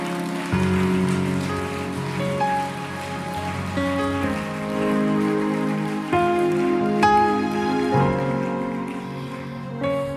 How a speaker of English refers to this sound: Let's give God a clap this morning. We love you, God.